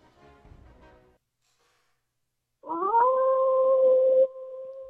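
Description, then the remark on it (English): A single long wolf howl, played as a sound effect, rises and holds a steady pitch for nearly two seconds before cutting off, loud and alone after a short stretch of faint noise and silence. “That means we got a lone wolf in the pack. Freddie, let's hear it.”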